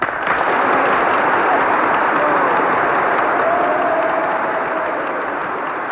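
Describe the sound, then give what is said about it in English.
Members of the US Congress applaud and cheer continuously after the final words of Winston Churchill's speech, a dense, steady roar of clapping and voices that holds at full strength without pause, going on for over a minute. “And with those final words, the members of Congress roared with approval, as you're hearing. It went on for over a minute.”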